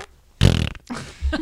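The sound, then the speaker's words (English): A voice imitates a fart with a loud, buzzy raspberry burst lasting about a third of a second, followed by a shorter, softer sputtering blow. “Can I make serious. Like a fart sound or something?”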